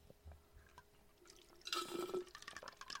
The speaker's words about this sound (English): Oh, I'm sorry, you can hear my horrible slurping sounds. That's awful. I'll drink it more quietly.